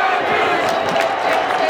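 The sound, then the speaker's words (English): A baseball stadium crowd, in a section with many Yankees fans, yells during a tense late-inning moment in a dense, continuous roar, many voices blending into a loud, steady wall of noise with scattered shouts rising above it. “This part is probably hard to hear us because of all the yelling.”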